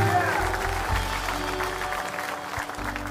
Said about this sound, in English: Give them a great big clap offering and say, thank the Lord. Thank the Lord.